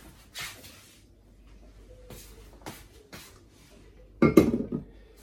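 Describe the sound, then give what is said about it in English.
Water just off the boil, used to wet a V60 coffee filter, swishes faintly as it is swirled in a vessel amid soft clinks, then is thrown away in a short, loud splashing gush near the end, with no talking. “And as that runs through, okay, and just give this a swirl around and throw this water away.”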